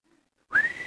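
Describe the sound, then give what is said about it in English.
A man whistles a short, breathy note that rises slightly in pitch, imitating a woman's whistle used to call the family together for dinner. It follows a brief quiet moment, comes through fairly loud, and has no talking over it. “she came up with this little whistle thing. It's a unique whistle.”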